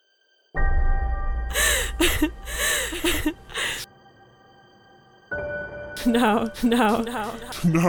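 A person imitates quick, heavy panting, with rapid breathy gasps in two loud bursts separated by a brief pause.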